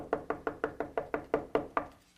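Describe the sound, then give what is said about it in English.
A rapid, steady series of about nine hard knocks on a door, evenly spaced and fairly loud, with no voices, ending in a brief fade. “And all of a sudden you start hearing this on the door.”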